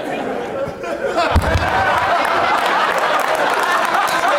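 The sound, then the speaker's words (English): An audience claps in a steady, dense patter that builds after a moment and holds, mixed with murmuring crowd chatter and a brief low thump early on. “Wait, are you guys clapping at the idea of him seeing a bunch of Yorkies and coming?”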